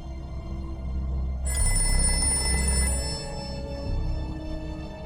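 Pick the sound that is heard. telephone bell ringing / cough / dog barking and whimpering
telephone bell ringing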